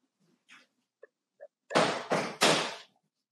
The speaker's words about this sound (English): Sorry. The AC started. I wanted to close the door.